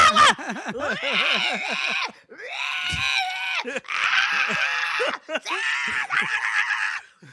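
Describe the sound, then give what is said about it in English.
A voice imitates a little kid screaming like sirens through a grocery store in four loud, drawn-out shrieks, the first wavering up and down like a siren, separated by short breaths, alone with no other talk. “This little kid goes the fuck off, and he's screaming like sirens through the grocery store.”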